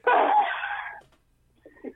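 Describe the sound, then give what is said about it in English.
An adopted Maine Coon cat, from the Bourbon County, Kentucky Rescue Mission in Paris, Kentucky, lets out one loud, drawn-out meow lasting about a second, followed after a short pause by a much softer, brief second meow. No talking. “Jason, the cat that we adopted, don't run from me.”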